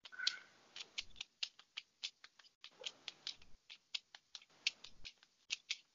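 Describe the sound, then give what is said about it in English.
Tarot cards being shuffled, a steady series of crisp papery snaps and riffles repeating in an irregular rhythm, with no one speaking. “I'm sure you can hear me shuffling.”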